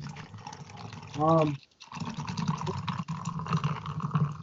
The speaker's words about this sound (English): That's extremely loud drink pouring. I couldn't even hear what it was saying. It's ASMR.